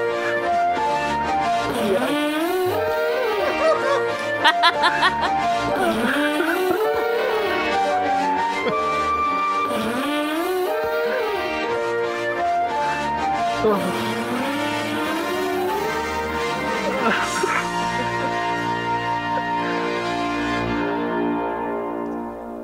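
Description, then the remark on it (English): A recorded symphony of farts: dense, layered squeaky blasts that bend up and down in pitch, arranged like music and playing loudly and continuously, with no one talking over it. “I found that fart symphony, by the way. If you want to hear a little snippet.”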